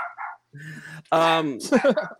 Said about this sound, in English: Sorry, my dog's barking.